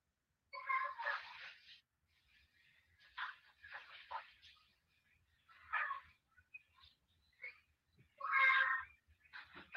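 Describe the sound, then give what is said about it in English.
A child screams in a series of shrill, wailing bursts, about five cries spread over ten seconds, some loud and drawn out, with brief quieter gaps between them, picked up by a microphone at 11:40. “That's a kid screaming.”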